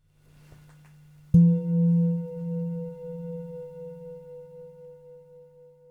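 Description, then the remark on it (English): A single meditation bell is struck once after a faint low hum, ringing out with deep, rich tones that shimmer and pulse as they slowly fade over several seconds. “At the sound of the bell, notice the sensations of hearing.”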